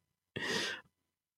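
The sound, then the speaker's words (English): A single breathy yawn from one person, a short airy exhale of about half a second that rises quickly and fades, with silence on either side. “Well, I'm yawning. I'm yawning. Sorry about that.”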